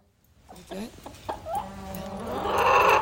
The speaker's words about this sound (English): We have this fancy board, and so I've this been recording animal sounds. This is what we're using the fancy board for, you guys. I'm like, hey, we don't have to buy a chicken clucking sound because this is like what our barn sounds like.